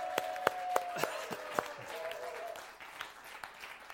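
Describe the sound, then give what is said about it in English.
Scattered hand claps ring out from a small audience welcoming a speaker, a handful of sharp individual claps over a low murmur, with a sustained tone underneath that fades partway through. “So, ladies and gentlemen, let's have a nice welcoming can round of applause”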